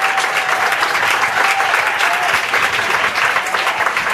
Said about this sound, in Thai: เฮ้ยไม่ชอบเหรอถ้าชอบก็ปรบมือดิ